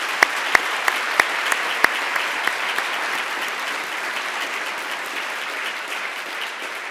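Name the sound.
audience applause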